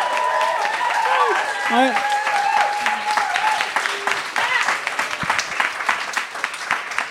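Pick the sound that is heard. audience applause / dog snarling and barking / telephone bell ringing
audience applause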